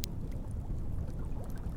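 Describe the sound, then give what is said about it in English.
Water splashing in a lake: a steady, churning wash of sound with a low rumble and occasional brighter splashes breaking through, holding an even loudness throughout with no voices. “that I first heard splashing in the lake.”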